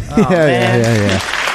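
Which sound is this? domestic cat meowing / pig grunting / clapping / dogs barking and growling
clapping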